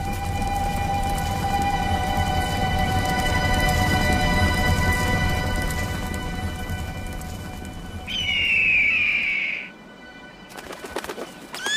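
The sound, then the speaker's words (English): A hawk gives one loud, drawn-out screech near the end, rising sharply over a steady low outdoor rumble that fades just before the cry. “The hawk flies and hunts, but when he lands, you place a hood over his head and he is helpless.”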